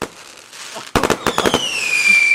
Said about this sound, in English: Guys, oh my goodness, can you believe it? Those fireworks are still going off. My dogs are going crazy.